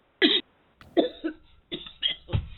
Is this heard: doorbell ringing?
no